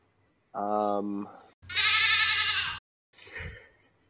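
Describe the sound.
A person mimics a goat with a few loud, wavering bleats, the middle one longest and most strained, then a shorter rougher call, with no other talk.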